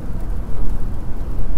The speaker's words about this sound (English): This rain is crazy. For real.